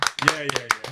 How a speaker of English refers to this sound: Now, round of applause in the room.